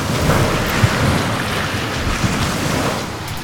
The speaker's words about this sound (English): Another wave's rolling in. It's coming over the top of the landing.